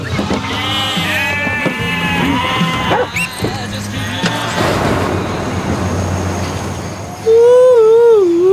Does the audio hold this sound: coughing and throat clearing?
no